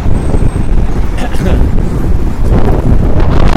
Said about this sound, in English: Oh yeah, I heard it was going to be windy today. No kidding. Wow. And the wind is even worse over here on 8th Avenue. Wow, it's pretty windy.